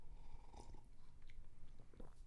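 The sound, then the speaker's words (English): Quiet sipping of warm homemade coffee from a cup, a few soft wet slurps and mouth sounds spaced about a second apart over a low background hum, with no talking. “You'll have to give me a sip of yours.”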